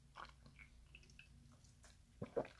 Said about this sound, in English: I'm just going to have a little sip with y'all real quick.